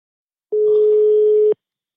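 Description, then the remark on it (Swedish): A single steady telephone ringing tone, one clear electronic beep held for about a second before cutting off, loud, with silence before and after and no voices, as a call is placed to a company that does HBTQ certification of workplaces. “För vi ringde killen på det här företaget igår.”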